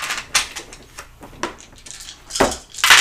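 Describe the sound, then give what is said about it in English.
Dice rolled by a player in a tabletop game, for travel through a forest hex, clatter and tumble across a hard surface, a run of sharp, bright clicks with several louder knocks scattered through the roll, and no voices. “Pick up your dice and roll them.”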